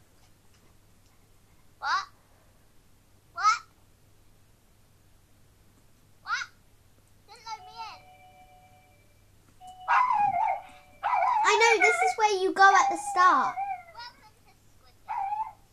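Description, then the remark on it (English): A dog barks a few times with short gaps between the sharp barks, then breaks into a louder, rapid flurry of barking and yelps, with a person briefly speaking. “dog, shush.”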